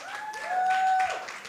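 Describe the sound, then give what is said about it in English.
A church audience clapping in a steady, moderate wash of applause, with a faint sustained tone humming underneath throughout. “You could clap better than that.”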